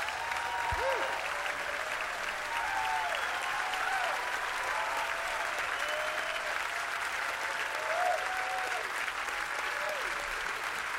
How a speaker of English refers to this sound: and a very long applause break. That was also part of the song.